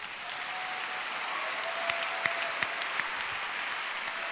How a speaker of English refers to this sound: Give the Lord a wonderful clap.